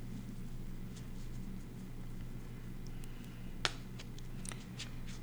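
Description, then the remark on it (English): Tarot cards being shuffled: a sparse run of soft, papery flicks and light taps, with one sharper snap midway, over a steady low hum and no talking. “Shuffling again. Shuffling, shuffling.”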